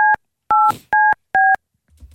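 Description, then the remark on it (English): Four short, evenly spaced telephone keypad tones beep in a steady rhythm as a phone number is dialed, each a clear two-note electronic chirp, followed by a faint rustle near the end. No one speaks. “Anybody who knows a phone could listen to that and actually figure out what David Matthew's number is”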